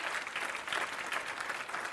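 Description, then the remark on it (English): An audience bursts into steady applause, many hands clapping at once in a dense, even wash of sound that holds at a fairly loud level throughout, with no voices standing out. “Somebody clap your hands like that's true, would you?”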